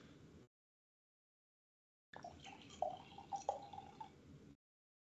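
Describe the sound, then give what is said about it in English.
A drink being refilled pours into a glass: a brief splash, a short silence, then a steady two-second stream of liquid with bright, bubbly glugs that rise slightly in pitch. No one speaks. “In fact, I'm going to refill my drink.”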